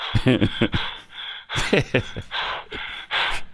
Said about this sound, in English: Mel Gibson, heavy breathing. You don't care. That's always worth playing.